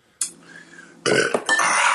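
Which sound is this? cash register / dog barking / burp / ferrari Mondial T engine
burp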